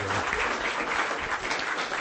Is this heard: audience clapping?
yes